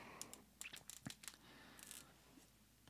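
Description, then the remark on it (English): Quiet crinkling and scraping of plastic Amazon product packaging as someone struggles to tear it open by hand, with a string of short tugging and tearing sounds in uneven bursts, then a softer rustle trailing off. “This is like impossible to open.”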